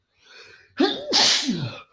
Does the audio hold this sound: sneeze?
yes